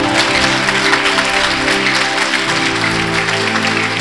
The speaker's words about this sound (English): If you are one of those women right now, stand on your feet and just give God a clap. Bá jẹ́ ọ̀fẹ́ lára àwọn obìnrin yẹn. Stand on your feet and give God a clap. Pàtẹ́wọ́ sí Jésù. Stand on your feet and give God a clap. Pàtẹ́wọ́.